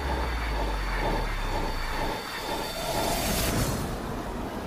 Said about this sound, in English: The subway? Oh my lord.